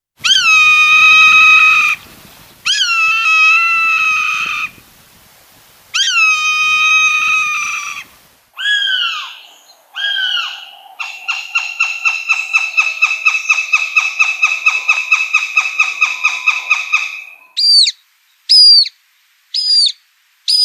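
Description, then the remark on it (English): Three calls of Idaho raptors in sequence: a Swainson's hawk's long drawn-out screams, a northern goshawk's rapid chattering series of sharp notes, then a northern harrier's short, thin whistled calls, all loud. “Okay, so that was a Swainson's hawk, a northern goshawk, and a northern harrier.”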